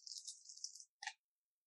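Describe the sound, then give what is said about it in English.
Dice are rolled for a perception check in a game, the number of dice equal to a character's perception stat. They rattle in a steady, bright clatter for most of a second, then stop; after a short pause comes one crisp clack as they land. No voices. “And so you're going to roll a number of dice equal to what your perception is.”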